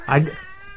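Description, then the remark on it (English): A cat gives one short, clear meow, lasting about a quarter second. A faint, steady tonal hum lingers in the background afterward. “I just get out of here, you stupid cat.”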